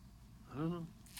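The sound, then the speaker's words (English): A single sneeze: a short voiced, rising-and-falling build-up followed by a sudden sharp, breathy burst at the very end. “Who sneezes is pleasing.”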